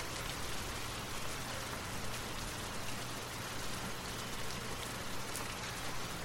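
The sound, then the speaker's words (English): Steady rain patters on a hard surface, a dense, continuous hiss of drops with a faint low hum underneath. No voices, just the even downpour throughout. “Imagine the rain washing away any unease or discomfort you might be feeling.”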